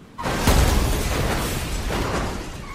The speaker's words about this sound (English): German Hanford's corpse slams onto the hood of Sergeant Al Tart's cruiser.